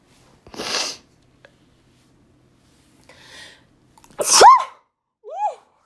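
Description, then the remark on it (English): Two sneezes a few seconds apart, the second louder with a voiced 'ah-choo' quality after a sharp inhale, followed by a brief faint vocal noise. No talking. “Oh my goodness, I have to sneeze.”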